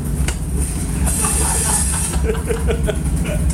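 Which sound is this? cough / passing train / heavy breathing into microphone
passing train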